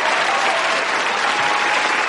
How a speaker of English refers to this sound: Roll the crowd noise.